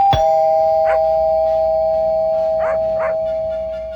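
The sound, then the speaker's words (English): A doorbell chimes with a sharp strike and a long sustained ringing tone, followed by a few short dog barks over the fading chime. “So I'm sitting there wearing women's makeup and lipstick with a bed sheet around my shoulders when the doorbell rang.”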